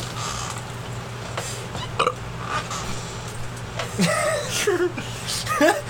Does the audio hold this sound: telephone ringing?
no